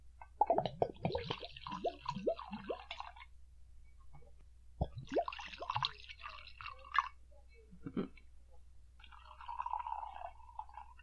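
Liquid glugs and splashes as scotch whisky is poured into glasses in several bursts, with pauses between pours and a final trickle, fairly clear with no talking.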